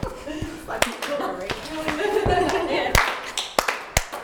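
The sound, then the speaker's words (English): A rhythmic body-percussion pattern of sharp claps, taps, slaps and stamps, about nine distinct hits at an uneven, patterned pace (clap, tap, tap, clap, slap, slap, stamp, clap, clap), with a voice talking or chanting underneath throughout. “All right, so clap, tap, tap, clap, slap, slap, stamp, clap, clap, clap. And back in.”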